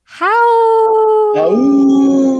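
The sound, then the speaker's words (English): A long, loud howl that rises quickly, holds a steady tone, then drops in pitch and carries on in a lower, sustained wail, heard alone without speech. “should have prepped you for the howl.”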